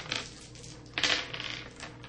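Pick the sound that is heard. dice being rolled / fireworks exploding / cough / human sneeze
dice being rolled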